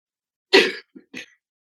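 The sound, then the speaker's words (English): A harsh cough bursts out, followed by two shorter throat-clearing grunts in a quick uneven sequence, with no talking. “Here comes an old man in the soprano cough.”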